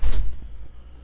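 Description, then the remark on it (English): A door opens with a short low-pitched thud and rattle, loud at first and then fading into a quiet rumble, with no one speaking. “Is this door locked? No. You're good.”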